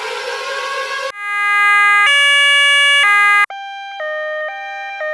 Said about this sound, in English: Can you play some sort of siren? Is there some sort of siren sound that we can have? Because it's time for the John Stones update.